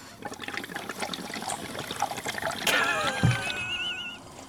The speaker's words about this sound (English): Oh my god, the bong again. Oh, what are we doing? Drinking water?